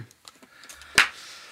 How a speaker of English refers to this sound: Whatever. That's a slow clap. Yeah, that's fine. Slow clap.